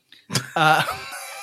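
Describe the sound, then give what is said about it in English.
A person imitates a hawk's squawk with a short raspy burst followed by a strained, nasal cry, fairly loud, tapering into a breathy tail. “Today I gave birth to a baby hawk. Seriously, respect my bird. Squawk, squawk, squawk.”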